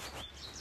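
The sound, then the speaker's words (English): Small birds chirping faintly, a few quick high tweets over a soft, steady outdoor hiss, with no one speaking. “But you can hear those little birds chirping.”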